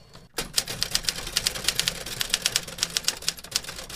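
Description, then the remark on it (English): The keys of a Smith Corona Sterling typewriter clack in a steady, brisk rhythm, many sharp strikes with a few slightly heavier hits among them, and no one speaking. “This typewriter gave me hope that with a little time, work, and attention, anything can be recovered.”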